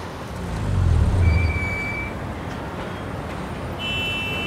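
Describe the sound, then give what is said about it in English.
Steady low engine rumble of cars idling, stuck in a traffic jam, swelling briefly early on, with faint high whining tones drifting over the continuous traffic drone. “Oh no, traffic jam. Now we've stuck.”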